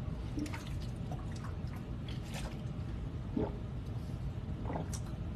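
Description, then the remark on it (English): Someone drinks spring water in the morning, with a few soft wet gulps and slurps scattered over a steady low background rumble. No one speaks. “Also, I don't want to carry this water with me because it's heavy.”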